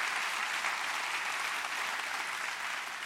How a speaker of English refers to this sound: Everybody, clap. Yeah.